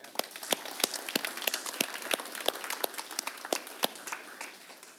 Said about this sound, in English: All right. Let's clap for him.